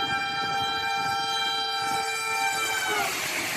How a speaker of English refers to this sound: Man's walking across train tracks. He looks a little drunk or out of it. Do you see where the train's coming from?